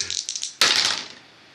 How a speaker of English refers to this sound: Oh, yeah, dice don't like that. That's a 7. That's a big no.